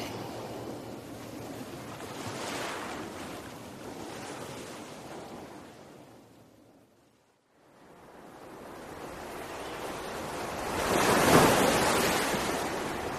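Waves wash and lap on a river amid steady wind noise, swelling at the start, fading to near silence midway, then surging louder again toward the end. No voices.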